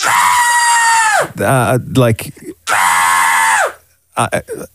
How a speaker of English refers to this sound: Okay, that's a scream.